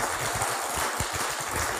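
An audience applauding a couple married 54 years, a dense, steady wash of clapping that holds at an even level for the whole stretch with no voices breaking through.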